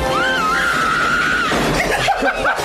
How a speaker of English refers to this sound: Was that a woman's laugh? Yeah, that was a woman. Wait, go back, man. Yeah, it was. That scream. It was a woman.